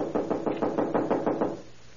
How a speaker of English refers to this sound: I'm wearing out my knuckles on this door.